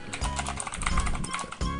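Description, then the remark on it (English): Rapid, uneven clicking of keys on a mechanical computer keyboard, fairly loud, with quick bursts of keystrokes and brief pauses, no voices. “And apologize for the clicky keys.”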